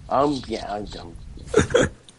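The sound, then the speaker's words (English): A loud, drawn-out burp with a falling, throaty tone, followed by a couple of shorter, sharper vocal bursts. “Thanks for burping, whoever did that, by the way.”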